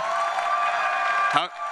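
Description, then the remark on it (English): A live audience on a show floor applauds and cheers in a steady, dense wash of clapping and crowd noise, with a single voice rising briefly above it near the end. “I love the show floor here, and that wasn't a spot where you needed to applaud.”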